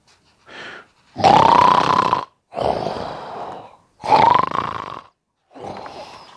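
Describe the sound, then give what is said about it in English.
A voice imitates loud snoring: a rhythmic series of about five rough, rasping breaths, with longer grunting snores alternating with softer breathy ones and short pauses between. “"Wake me up in spring," he said. "And by the way, I snore."”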